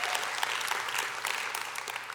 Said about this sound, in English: Give yourselves a round of applause. Fort McKinley, give yourselves a round of applause. Online, give yourselves a round of applause.